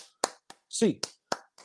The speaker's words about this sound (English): hey, let's get those hands up. 8 clap time, baby. And 1, 2, 3, 4, 5, 6, 7, 8.